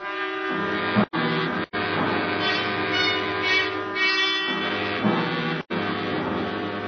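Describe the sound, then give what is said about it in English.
A train rumbles by with a loud, sustained horn blaring almost continuously over the heavy clatter of its passing, cut by a few abrupt brief dropouts. “The next one will be through tomorrow morning”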